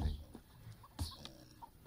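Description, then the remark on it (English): Faint, scattered chicken clucks as a man separates the chickens, a few short calls spread unevenly across a couple of seconds over a soft, noisy background. “He's separating the chickens.”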